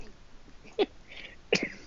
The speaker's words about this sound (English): I haven't said I've come back with a cough, by the way. Well, you have now, but really clearly.